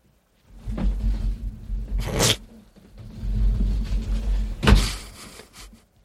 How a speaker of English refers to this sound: You can open the door and close it, or you can open the door and go down like one or two stairs, but you have to be real quiet because I can't hear it.